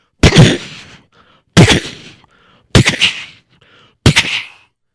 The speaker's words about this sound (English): All right, fire! Not the cannons, just gunfire.